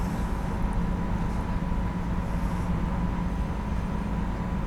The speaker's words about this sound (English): a train over bridges